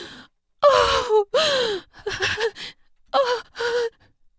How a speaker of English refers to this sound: Michelle's body curled forward as a frenzied gasp escaped her lips.